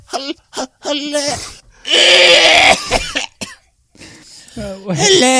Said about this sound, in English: Could you cover your mouth when you cough? With the bag. Yeah, where's your mask? Cover it with the bag of candy.